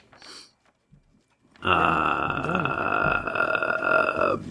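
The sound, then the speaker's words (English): A long, loud burp rumbles for about three seconds after a brief faint noise and a moment of quiet, holding steady until it trails off. “Burp.”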